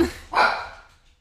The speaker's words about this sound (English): Oh, Bob. That's my dog. Bob, it's me. Just me.